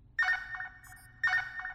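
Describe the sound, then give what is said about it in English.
A telephone rings with an incoming call from the prefects of Sector 2 and 3: two identical bursts of a bright, warbling electronic ring about a second apart, fairly loud, over a low background hum. “Stop that ringing, please! Call from the prefects of Sector 2 and 3.”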